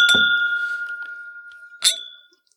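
Drinking glasses clink together twice in a toast, each strike sharp, followed by a clear, bright ring that lingers and slowly fades.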